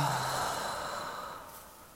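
A long, deep breath pushed slowly out through the mouth during a guided breathing exercise, a soft airy whoosh that starts full and gradually tapers off over about two seconds, alone with no talking.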